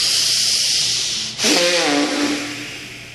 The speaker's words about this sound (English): Look deep inside the forehead in the space and start breathing long and the hissing breath both from the belly and the chest.